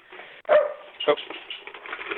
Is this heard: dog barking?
yes